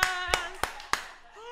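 Four crisp hand claps from a clap button land at an even, quick rhythm, like a short clap sound effect, over a steady humming tone with a faint voice-like quality that lingers between them.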